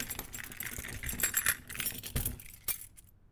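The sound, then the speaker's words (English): Metal keys jangle and clink in a rapid, bright rattle, with a couple of sharper knocks as a door is closed and its lock is worked, before the jingling stops and falls silent. “Just as he finished his sentence, the professor turned off the lights and closed and locked the door behind him.”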